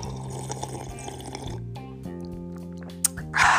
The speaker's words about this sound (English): Like, seriously, let me sip on some of this water, yo. I can't sip on that tea. Back sip on this water. Hold on.